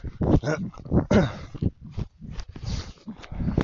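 A dog vocalizes in a string of loud, irregular bursts, short barks and strained whining yelps tumbling one after another with no one talking.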